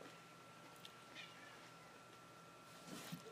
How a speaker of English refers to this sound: your cat is meowing.